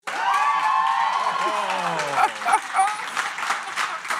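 An audience breaks into loud, sustained applause mixed with cheering and excited shouts, voting by clapping for a contestant's winter party; the clapping is steady throughout with whoops rising over it.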